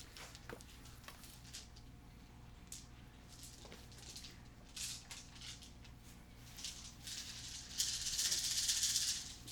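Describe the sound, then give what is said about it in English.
Small hard objects click and clatter in scattered bursts, then build into a steady, brighter rattle near the end, like dice being shaken and rolled. Fairly quiet, with no talking. “Come on, four more dice.”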